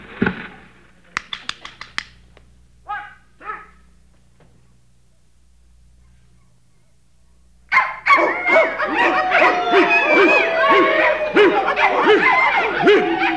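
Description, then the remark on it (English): A few sharp clicks and short yips, a pause, then a loud chorus of dogs barking, yelping and whimpering excitedly over one another until the end, as a record is played for them. “Down, Strudelmeier. Take the record off. Well, it's too bad. They get too emotional.”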